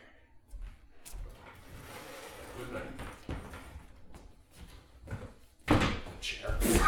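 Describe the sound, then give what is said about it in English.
A person is hit from the blind side with a chair: several heavy wooden thuds and clattering crashes in a struggle. The loudest impacts land near the end, with muffled voices and scuffling underneath. “Yeah, I hit you with a goddamn chair.”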